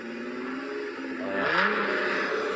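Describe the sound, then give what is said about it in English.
A voice imitates a revving V8 car engine, a throaty, rumbling drone that climbs in pitch and swells louder midway, then settles into a steady growl, alone without any talking. “Like the sound of what kind of car would you say it would sound like?”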